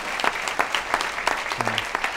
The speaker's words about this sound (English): A round of applause for those folks, you know, if we can.